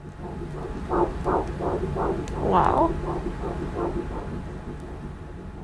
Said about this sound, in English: That's the only way to describe the first time you hear the sound of your baby's heartbeat at that first ultrasound. We didn't get the chance to hear that sound the first time.